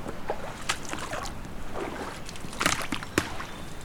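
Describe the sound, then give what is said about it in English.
Steady sloshing and splashing of water, with several irregular surges as legs push at a slow wading pace through a flooded area deep enough for hip waders. Continuous low wash in the background, no voices. “Now I'm in the flooded part. Now I'm in hip wader territory.”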